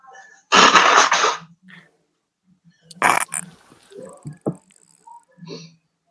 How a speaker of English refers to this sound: I'm like allergic to the whole world now. Oh, were you sneezing? Is that what that was? What is that, a sneeze?